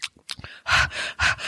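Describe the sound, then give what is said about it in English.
A voice imitates the heavy breathing of audiobook narrator James Marsters, with a few short huffs followed by two loud, noisy breaths that hiss broadly, each lasting about half a second. “But the thing is he's breathing in a lot of it.”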